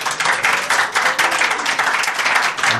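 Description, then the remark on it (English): An audience of about 45 people bursts into steady applause, dense overlapping claps at fairly loud volume, without any voices. “I'd say from the applause, that's about 45.”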